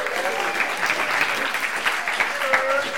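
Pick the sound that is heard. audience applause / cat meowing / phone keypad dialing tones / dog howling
audience applause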